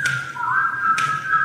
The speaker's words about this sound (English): whistling a cappella group in which they whistle